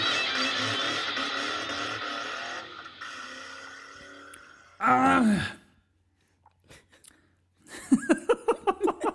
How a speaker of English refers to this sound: Yeah, I decided I'm going to start by clearing my throat.